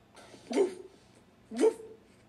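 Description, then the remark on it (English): A person imitates a dog with two short, gruff barks about a second apart, each a sharp burst over a quiet background. “Simple. Double bark.”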